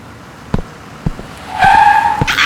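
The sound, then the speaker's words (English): A local bus skids to a stop, its tires letting out a loud, sustained high-pitched squeal after a couple of sharp knocks, with no talking. “This local bus was the easiest vehicle to commandeer.”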